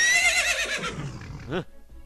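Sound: horse neighing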